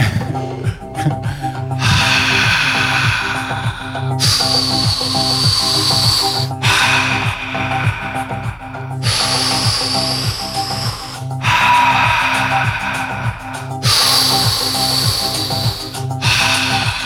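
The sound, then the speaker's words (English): Deep, airy breaths drawn in and pushed out through the mouth, alternating in a slow, steady rhythm of roughly two-second phases, loud over a soft rhythmic music backing. “would like to breathe in through your mouth and out through your mouth.”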